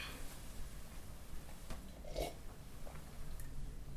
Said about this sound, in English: I will now have a sip of tea.